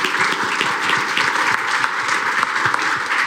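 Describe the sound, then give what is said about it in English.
A crowd applauds steadily, many hands clapping in a dense, continuous wash of sharp claps that holds at an even, fairly loud level throughout. “I think we should give a round of applause.”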